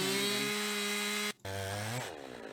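A chainsaw roars steadily, its engine pitch holding, cutting out briefly, then revving back and rising as it bites into wood, cutting four straight slabs, loud and continuous with no talking.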